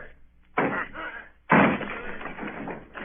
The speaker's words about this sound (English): Down with the door, then! Aye!